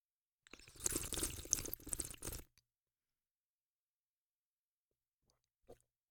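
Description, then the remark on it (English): A loud slurp of wine drawn noisily through the lips while tasting it, pulling air over the tongue, for about two seconds, airy and wet, followed by silence and a brief faint click near the end. “And the really geeky thing to do, and I'll do it in a second, I'll let you just enjoy yours because it's really loud and obnoxious sounding, is to slurp.”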